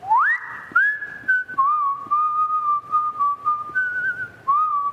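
A person whistles a slow, steady tune, holding long clear notes with a few upward slides between them, with no talking.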